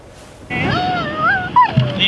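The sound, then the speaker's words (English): A dog, Arthur, whines in a long, high, wavering tone with a sharp little yip near the end while chasing a toy truck on a beach, in a GoPro video; clear, with no one talking. “Arthur the dog on the beach chasing a toy truck.”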